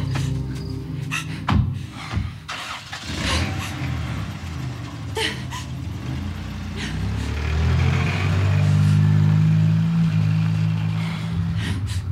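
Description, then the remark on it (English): A car engine turns over and rumbles, with a few sharp clunks like doors shutting, then the engine revs up loudly and the pitch climbs as the car pulls away. “To my car! We're getting the hell out of here! Get in, hurry!”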